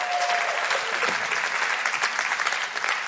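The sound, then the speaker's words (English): An audience gives a round of applause for the information just presented, a dense wash of many hands clapping at an even, fairly loud level that holds for a few seconds without letting up. “Round of applause for all of that information.”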